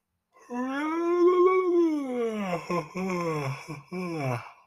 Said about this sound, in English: Why I keep yawning.